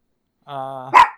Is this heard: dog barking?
yes